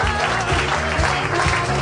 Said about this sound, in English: Nobody go anywhere. Keep clapping. It's fun.